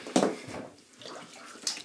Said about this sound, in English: And I'm getting in the tub now. 1 foot. 2 foot.